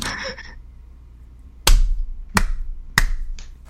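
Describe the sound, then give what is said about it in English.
Sharp hand claps ring out, three crisp smacks spaced under a second apart, loud against a quiet low hum, with no one speaking; a clap made at the start of a recording to sync it for editing. “Let's do a clap and start. Okay. So it makes editing easier.”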